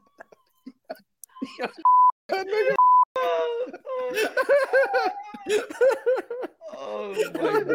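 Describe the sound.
Two short, steady high-pitched censorship bleeps cut in quick succession, surrounded by bursts of loud, rolling laughter and animated voices talking over each other.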